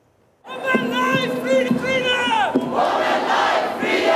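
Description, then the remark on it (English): A large protest crowd in downtown Vancouver, condemning a suspected poisoning targeting Iranian schoolgirls, chants in unison. Many voices rise together in a rhythmic, pulsing call before breaking into a louder, rougher swell of shouting and cheering. “A large crowd gathering in downtown Vancouver condemning a suspected poisoning targeting Iranian schoolgirls.”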